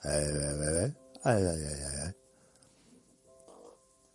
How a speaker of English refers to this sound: It was a really, really loud fart. I don't know if you heard that. It's like a wind tunnel.